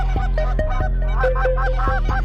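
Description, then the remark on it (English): A patented goose call blown in a run of loud, honking notes with a reedy, nasal tone, steady, with brief pauses between bursts and no talking. “They have a bunch of literature on their website to tell you how it's patented and how it just absolutely knocks down the birds.”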